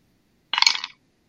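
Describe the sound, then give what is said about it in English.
A quick clatter of dice rolled by a player taking a turn in a game, tumbling across a hard table, a rapid flurry of sharp clicks lasting under half a second, with no voices around it. “I'm going to choose my dice this time.”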